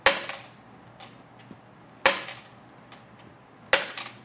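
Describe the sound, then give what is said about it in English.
A 90% silver coin is dropped three times onto a hard surface, each sharp clink followed by a few small bounces and a brief, fairly high-pitched ring, with no talking. “Going back to the 90% silver.”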